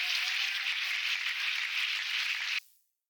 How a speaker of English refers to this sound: Prayer makes a difference. You believe that? Give the Lord a hand clap for prayer.